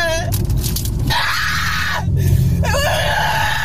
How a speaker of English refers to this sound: They're driving and she starts screaming out the window at no one, like a stranger, right? Just someone walking on the sidewalk.